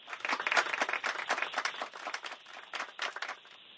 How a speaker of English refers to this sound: Clap your hands, why don't you please, and say hello to Congressman Danny Davis.